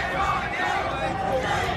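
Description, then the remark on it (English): A crowd of protesters outside a Donald Trump campaign rally in Kansas City shouting "Shame on you" together in a steady, loud din of many overlapping voices, with chant-like swells rising above the roar throughout the short stretch. “protesters shouting "Shame on you" outside a Donald Trump campaign rally.”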